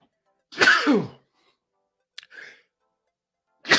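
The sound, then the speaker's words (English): A single loud sneeze bursts out, followed by a short sniff and quiet breathy exhale, then another sudden burst of noise right at the end. “I was fighting that sneeze for about a good 30 seconds.”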